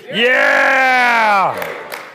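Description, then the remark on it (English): A church audience at a Sunday service lets out one loud, sustained yell together on a count of three, a drawn-out group shout lasting over a second before it breaks off and fades, with a little murmur and echo after. “Let's give them a big yell on three.”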